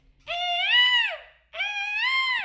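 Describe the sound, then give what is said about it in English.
A person imitates a peacock's call with two loud, drawn-out wailing cries, each rising and then falling, separated by a short pause, with no other sounds. “Tell me that's not a great they peacock sound.”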